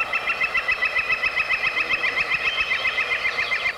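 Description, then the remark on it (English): A space shimmer reverb effect: a bright, sustained high wash with a rapid, even fluttering pulse and a soft low throb underneath, holding steady throughout with no voices. “Here's the space shimmer.”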